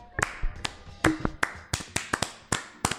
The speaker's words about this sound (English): I think we needed to have a round of applause